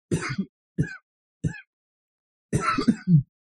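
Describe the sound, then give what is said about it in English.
A burst of harsh coughing from a vape cloud, then two short throat-clearing hacks, followed by a longer rough fit of coughing and a final throaty clear. Fairly loud, with no talking. “No, what are you coughing for?”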